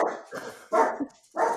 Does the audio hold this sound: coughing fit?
no